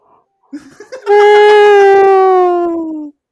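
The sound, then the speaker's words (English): A person imitates a whale: a few short throaty sputters, then one loud, sustained, mid-pitched moaning tone that glides slowly downward for about two seconds before cutting off. “Okay, actually, whale sound. Let me try. An actual whale sound.”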